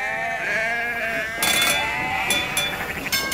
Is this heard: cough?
no